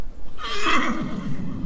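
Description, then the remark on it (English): A black horse gives one loud whinny that rises in a shrill burst and then trails off lower over about a second, with steady outdoor background noise underneath. “Nice black horse there, look.”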